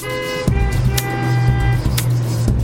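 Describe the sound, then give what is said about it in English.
Traffic noise: a steady engine rumble with a tonal, horn-like drone and a few sharp knocks and clatters over it, fairly loud, with no one talking. “When traffic's a nightmare.”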